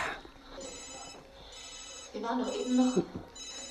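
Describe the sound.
A telephone bell rings in repeated bright bursts at moderate volume, with a muffled voice and a brief tonal sound in the background partway through.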